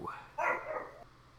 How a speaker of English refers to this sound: Gosh, dog. They know not how. They only know bark.